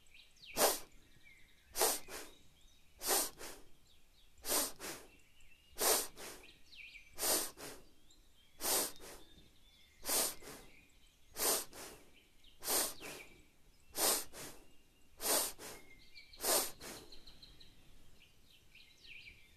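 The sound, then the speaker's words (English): A steady series of sharp, forceful sniffs through the nose in a breathing exercise round of 10 breaths, evenly spaced roughly a second apart, fairly loud with quiet gaps between them and no talking. “So again, in your own time, we'll do a round of 10 breaths. It should feel like you're sniffing, trying to hold off a runny nose.”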